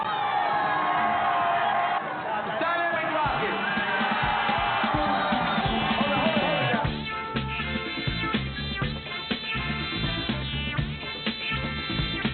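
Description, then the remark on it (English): A loud crowd at a DJ battle cheers and whoops to hype it up, with high rising and falling shouts, for about seven seconds before giving way to rhythmic, beat-driven music. “B, yeah, and then you know, the crowd would just hype it up, yeah, woo.”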